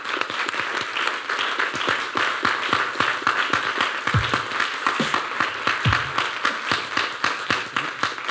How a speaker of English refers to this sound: Well, we want to thank our panelists. Give them a round of applause.